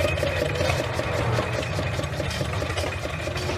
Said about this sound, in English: these things are called hit and miss motors because of the way that they only fire occasionally. Yes. Let me take a microphone on over here and put it next to one of these engines and let people hear what it sounds like. It just fired.